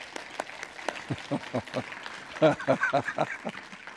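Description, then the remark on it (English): An audience claps for no longer having to wear masks, in a loose, uneven patter of sharp claps that swells briefly in the middle, with a few voices calling out among the clapping. “Can we clap for that?”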